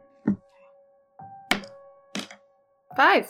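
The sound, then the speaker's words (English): A die rolled during a tabletop game tumbles across the table in a few separate hollow knocks spaced irregularly, landing on 5, with a faint steady hum behind, and a voice begins speaking right at the end. “And roll the die again, please.”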